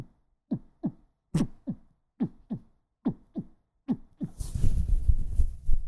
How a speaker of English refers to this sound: Can you hear your heartbeat? Yeah, I wonder if they can hear my heart. They can't.